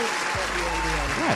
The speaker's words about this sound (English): So two claps. That is.